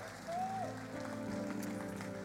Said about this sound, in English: Can you just give the Lord a big clap?